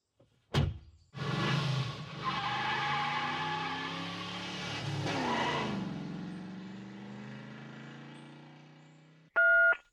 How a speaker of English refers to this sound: That sounds like someone stopped at the side of the road. And got out of the car.